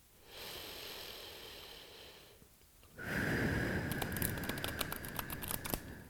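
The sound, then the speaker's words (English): A long soft breath in gives way to the rapid, crisp ripple of cards being shuffled, a dense run of papery clicks that grows busier toward the end. “And one more deep breath as I shuffle again.”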